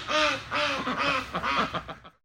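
A duck quacks loudly, a run of harsh, nasal quacks, first spaced out, then quickening into a rapid chatter before stopping. No one speaks.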